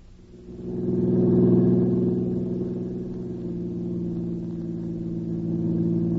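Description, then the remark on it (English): A car engine drones steadily, swelling briefly as if accelerating, then settling into a continuous low rumble of driving at cruising speed, with no voices. “Yeah, I'm sure tired to do nothing but driving around in this car.”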